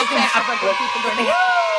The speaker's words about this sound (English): I need to get my technology on this podcast good enough to give you like a little applause. I'll see if I can find one. I think in GarageBand you can get this.